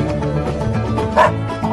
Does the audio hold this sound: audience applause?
no